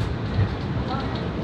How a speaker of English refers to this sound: In our busy train heading to Manhattan during rush hour.